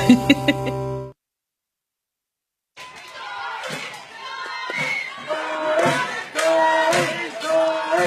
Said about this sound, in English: Man, listen to that crowd picked up on that field mic right now. They're chanting for Tori on the mound, and then the Central faithful going to the KK chant as KK Harris leading it off.